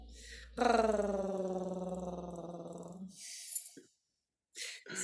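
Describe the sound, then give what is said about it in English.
A deep, sustained human growl rumbles for about two and a half seconds, loud, with a strong buzzing low tone that slowly falls, followed by a short breathy exhale and quiet. “If anyone can measure my growl and tell me what the vibrational frequency is, send me a message when you work it out.”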